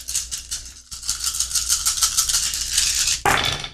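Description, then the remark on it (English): A handful of twelve dice clatters and rattles steadily for a few seconds in a tabletop role-playing game roll, a dense, bright jumble of small clicks, ending in a sharper burst as they spill out. No one speaks. “Okay, so go ahead and roll your stamina plus resistance, which I believe is 10 dice, but you'll get 2 for your stunt, so 12 dice total.”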